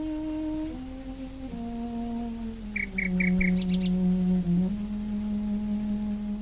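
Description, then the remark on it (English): A nightingale sings a short burst of rapid, repeated whistled notes partway through, heard over a slow, sustained melody played on a low bowed string instrument. “So she's a formidable figure, but what she did was bring art and the nightingale together.”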